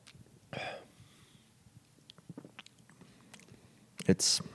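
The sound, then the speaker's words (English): A sip of Pachanga Mexican lager beer, served without lime, with a soft slurp, then quiet wet mouth clicks and swallowing noises, ending in a short breathy exhale. No one speaks. “Sipping the Pachanga now.”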